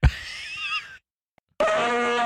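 Two loud, honking nose blows with a trumpet-like, reedy tone. Each lasts under a second, and a brief silent pause separates them. No one speaks.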